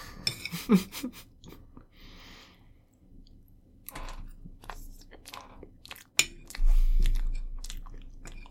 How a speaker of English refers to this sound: I'm surprised this made as much sound as it makes. I don't like it when our chews are synchronized. It's too close to us, like, kissing.